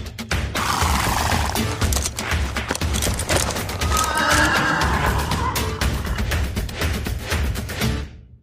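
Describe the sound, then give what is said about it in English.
Horses whinny loudly over a dense clatter of hooves clip-clopping at a fast, busy rhythm, with a steady low rumble beneath, all continuous before cutting off abruptly. “Get to the horses!”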